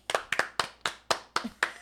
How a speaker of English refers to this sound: Clap if you've heard it before.